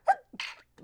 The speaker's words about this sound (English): I'm going to sneeze. Bless you.